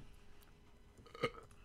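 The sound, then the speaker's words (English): A single small, soft burp, short and light, popping up once near the end over a quiet background with no talking. “That wasn't a man burp. It was like a little fucking cum bubble burp.”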